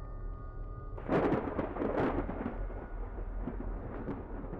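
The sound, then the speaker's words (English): After a second of low, steady hum, a loud thunderclap bursts in with sharp crackling snaps, then rolls on as a sustained rumble with scattered pops until the end. “Cue the creepy organ music, lightning crackling, evil laugh and wolves howling.”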